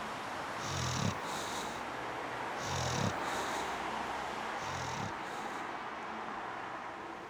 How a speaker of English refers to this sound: Though I imagine they refrain from discussing the breed's snoring habits in polite company.